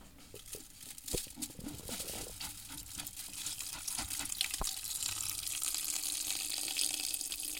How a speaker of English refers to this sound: And over here, a large press, stainless steel press. The herb is poured into this press.